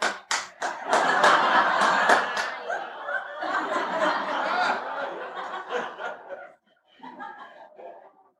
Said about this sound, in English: Then you know what? Everybody stands up and claps. Because you're clapping.